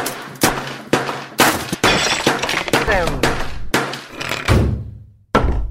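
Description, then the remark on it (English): A loud crashing sound effect standing in for a laptop crashing: things smashing and glass shattering, a rapid string of heavy impacts and tinkling debris over several seconds, then a short gap and one last hit. “Oh no, my laptop's crashed.”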